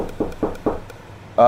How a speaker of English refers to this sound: I'm going next door and knocking on the door